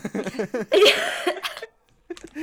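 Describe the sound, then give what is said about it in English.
A harsh cough bursts out right after some rough, gravelly vocal sounds of a Venom impression, then trails off into a short silence before another brief vocal noise. “The cough is worth it because the Venom was so good.”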